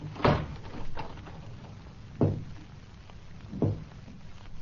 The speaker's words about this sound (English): were you knocking at this door?